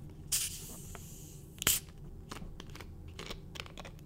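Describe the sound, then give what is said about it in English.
A plastic soda bottle hisses open in two bursts, a brief airy spurt and then a sharper, louder release of gas, followed by faint crackling fizz and scattered tiny clicks. “Let's do the plastic bottle.”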